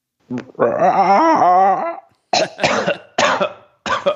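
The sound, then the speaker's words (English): A man's voice lets out a long, strained roar attempt that breaks off, followed by three or four loud, harsh coughs in quick succession; he is just getting over a cough. “The inside joke there is I'm just getting over a cough.”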